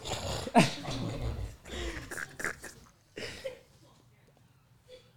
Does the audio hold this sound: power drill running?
no